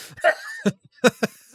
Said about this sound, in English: Someone's just coughing up their tea there.